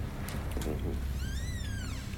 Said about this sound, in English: Ghostly whistle yet again.